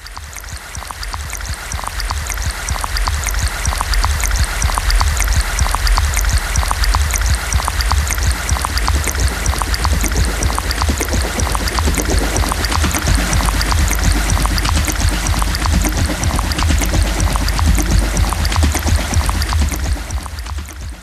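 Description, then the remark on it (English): Steady water of Lookout Creek rushing and burbling over rocks, a dense continuous wash of splashing with no voices, holding constant loudness throughout. “First Reaction Listening Session: Lookout Creek”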